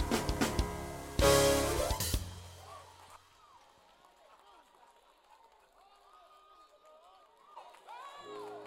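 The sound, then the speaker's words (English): A church audience bursts into loud clapping and cheering in praise of Jesus for about two seconds, then the applause fades into scattered, softer voices calling out and murmuring. “Jesus a hand clap of praise.”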